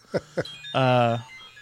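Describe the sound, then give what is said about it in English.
A phone alarm set for 1:30 goes off: two quick chirping blips followed by a sustained buzzy electronic tone lasting about half a second, fairly loud with no talking over it. “I set an alarm for 1:30 because I am deep into staycation mode”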